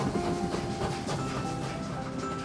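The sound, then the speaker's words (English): A train rumbles steadily along the rails past a banana farm with a continuous low roar, faint clacking and hiss layered over it, without any voices. “The story train is rolling past a banana farm where thousands of bananas are growing.”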